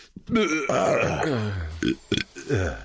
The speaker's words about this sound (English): You were just going to burp. Our for like, burps are in sync.